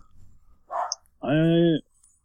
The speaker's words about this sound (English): Oh, there's a dog barking in the background. How weird.